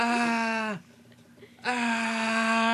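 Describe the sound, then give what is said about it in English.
A voice imitates screaming with two long, loud, sustained "ah" cries at a steady mid pitch, separated by a brief quiet pause. “He starts getting more aggressive, and they start dragging him off down this hallway, and then I just start hearing screaming like going ah ah.”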